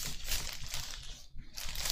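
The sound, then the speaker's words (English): Steady crinkling of a paper sandwich wrapper being handled, a dense crackly rustle that pauses briefly near the end before resuming. “I can hear the ASMR of the rapper.”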